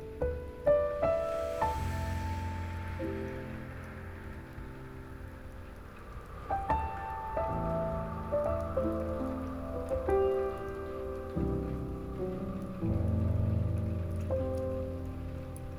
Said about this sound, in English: deep into your breath, hearing nothing but its ventilated hums as they harmonize with the sweet crashes of the raindrops.